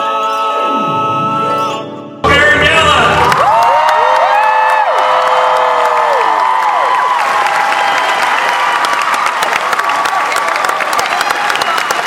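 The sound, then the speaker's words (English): A large crowd assembled in one room at Planet Comicon erupts in loud, sustained applause and cheering, with whoops and shouts rising over dense clapping that continues steadily after a brief musical lead-in cuts off. “Saying this is the biggest crowd Planet Comicon has ever assembled in one room.”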